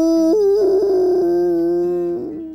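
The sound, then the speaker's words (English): A single long, loud howl from Ruff, a dog who has just squeezed out through a tiny tunnel into fresh air, alone, held at a steady pitch with a slight wavering lift in the middle before tapering off. “He let out a giant howl”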